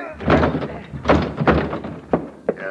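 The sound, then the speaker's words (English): A door is being battered open: a series of heavy, booming thuds land at irregular intervals, loud, with rattling and scraping between the blows. “Crash the door, Logan.”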